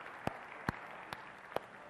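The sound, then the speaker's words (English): Thin, scattered applause from a church audience on Easter Sunday, welcoming guests and visitors: just four sharp hand claps at a slow, fairly even pace over a soft, steady background hiss, with no voices. “Even if the people next to you weren't clapping that hard, they're still glad you're here, so trust me.”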